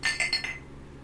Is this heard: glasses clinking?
yes